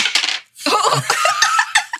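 A quick burst of dice, thrown away by a player, rattling and clattering across a hard surface, immediately followed by people laughing loudly.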